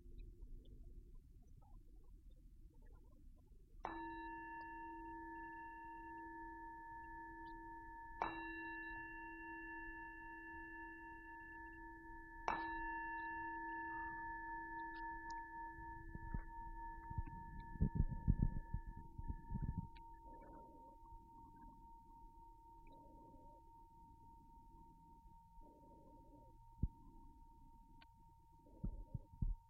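A meditation bell is struck three times a few seconds apart, each strike adding to a clear, layered metallic ring that hangs in the air and slowly fades over the quiet that follows.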